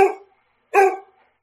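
A dog barks twice, two short, sharp, fairly loud barks separated by a brief pause, with no other sounds around them.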